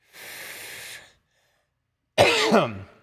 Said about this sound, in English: Wow. You need a cough button. You don't have a cough button?